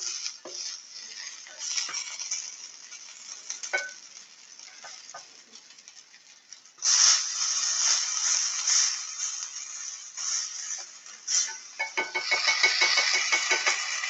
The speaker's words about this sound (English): Hear that sizzling? That's American pride right there.